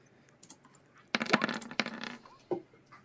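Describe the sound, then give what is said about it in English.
A die clatters across a hard tabletop in a quick burst of rattling clicks, tumbling for about a second before a final sharp tap as it settles. It is a roll to hit in a game. No one speaks. “Okay, give us a roll to hit.”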